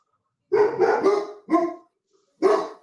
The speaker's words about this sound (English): Can you take your dogs out so I can think about this for like 5 minutes?